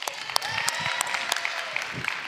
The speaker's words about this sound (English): How many of you are here today because you got invited by a friend, right? You guys have good friends. So clap it up for them.